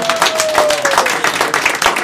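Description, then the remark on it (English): An audience breaks into applause after a contestant gives a correct quiz answer, a dense, steady wash of many hands clapping at a fairly loud level, with a faint whistle-like tone sliding slightly downward early on. “Yes, big round of applause.”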